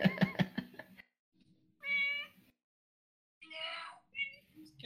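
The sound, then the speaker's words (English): A cat meows twice, each cry a drawn-out, tonal wail with clear harmonics, the second rising and trailing off, after a brief burst of speech at the start. “It's a fucking adorable cat, is what it is.”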